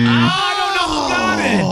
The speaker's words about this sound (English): went over the buzzer a little bit. How is mine always over the buzzer? This is nonsense.